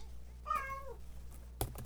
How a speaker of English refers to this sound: Well, my cat's trying to answer, but I'm not going to let her have that answer. Oh. Here you go. No answer, kitty.